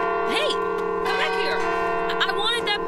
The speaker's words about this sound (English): Saints above, but that clock tower is loud.